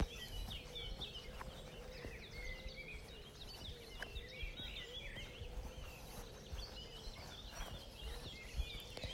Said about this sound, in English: Morning, Fetchies. I hope you can hear the birds going completely nuts. It's about 4:20 and I'm in Rabbit Field, as we call it,